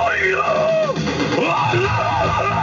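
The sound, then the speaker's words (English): A loud, raw gorilla scream fills the moment, a continuous wavering howl whose pitch sweeps up and down for a few seconds, harsh with no talking over it. “can we hear the gorilla scream one more time?”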